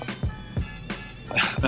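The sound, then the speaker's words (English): A dog grunts and snuffles in a few short, low bursts while rolling around on the floor, with soft scuffling between them. “So my dog is rolling around on the floor grunting.”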